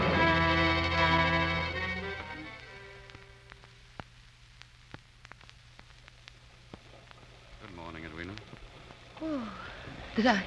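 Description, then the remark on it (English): Steady rain hisses throughout with scattered sharp drips, a low droning tone fading out in the first seconds, and a couple of brief voices near the end. “How's the weather this fine morning? Raining.”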